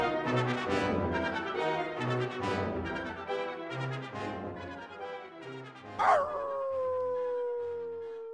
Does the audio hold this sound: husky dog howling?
yes